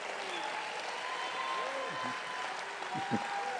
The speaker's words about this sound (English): Praise the name of the Lord. Let's give Jesus a very powerful good hand clap.